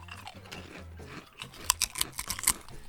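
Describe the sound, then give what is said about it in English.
Crunching on Takis jalapeno kettle chips in an ASMR taste test: a run of sharp, crackling bites and chews in quick bursts, getting louder toward the end, with no talking over it. “Kettle chip, you definitely get the jalapeno taste.”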